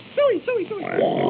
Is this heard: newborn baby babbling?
no